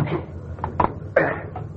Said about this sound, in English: I get the front door open. Turn the wheels toward the side of the bridge before you put the car in gear.